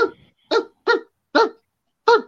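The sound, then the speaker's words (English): A man imitates a dog barking, letting out five short, loud woofs at a steady, slightly uneven pace, with brief silences between each bark. “Yeah, that one dude that he's like, the dogs are barking, and that's all he does.”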